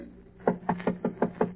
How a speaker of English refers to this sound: Then he knocks.